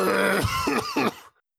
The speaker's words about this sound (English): Yeah, get your coughs out now.